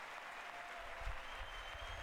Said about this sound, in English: Can't believe the Democrats are clapping to that.